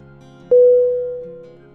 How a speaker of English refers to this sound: Gong sound. Temple gong.